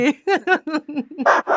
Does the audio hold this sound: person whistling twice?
no